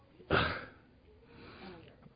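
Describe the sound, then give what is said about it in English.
One sudden, forceful sneeze bursts out, then fades into a quieter, breathy exhale or sniff a moment later. Nobody speaks. “Bless you, brother.”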